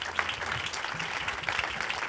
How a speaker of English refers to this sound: Keep it going for them, keep it going. Wait till they get to their chairs. The applause has to cover the chair break.